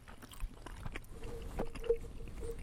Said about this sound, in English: I like to get right up there with my chewing. For the ASMR people?